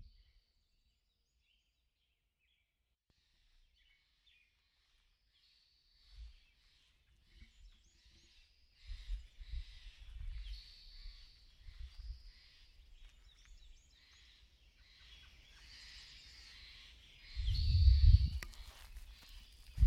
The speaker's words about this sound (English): about 6 a.m. 5:58. Wednesday, April 15th, 2015, and the migratory birds of South America and Central America have finally made it. This is that sound.